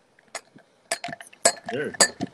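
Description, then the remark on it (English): Glasses of champagne clink together in a toast, several bright, ringing taps spaced about half a second apart, with a faint murmur of voices in between. “We're gonna cheers to you.”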